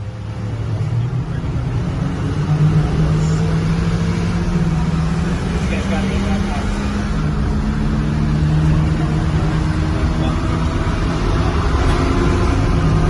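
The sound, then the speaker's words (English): An armored personnel carrier's engine roars steadily at high revs throughout, loud, with a constant low rumble and droning harmonics that shift slightly in pitch as it speeds through a small town. “But you can hear that thing revved like it's in fifth gear, and we're just screaming through this little town.”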